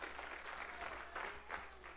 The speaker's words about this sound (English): Praise God. Let's give the Lord a hand clap of praise, because I believe that's true.